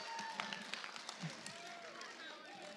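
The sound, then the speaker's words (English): Audience applause for volunteers, a steady patter of many hands clapping for the full few seconds, fairly soft, with faint voices murmuring underneath. “Give the volunteers a very good hand clap.”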